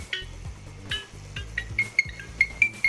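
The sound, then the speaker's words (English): A female parrot from India mimics an iPhone ringtone, producing bright, bell-like tones in a quick repeating rhythm over a low pulsing pattern, with sharp chirpy notes punctuating the melody. “There is a parrot from India that apparently has heard the iPhone ringtone so many times, she's now mimicked it.”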